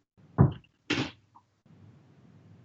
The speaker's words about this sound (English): My wife decided to come into the room. She's leaving. Any second now. Apparently we're being too loud and she's shutting extra doors so that we're not interrupting her.